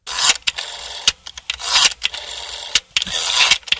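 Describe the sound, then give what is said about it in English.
A rotary phone dial is wound and released several times, each turn giving a raspy whirring sweep punctuated by sharp mechanical clicks, with no talking over it. “The rotary dial-up phone.”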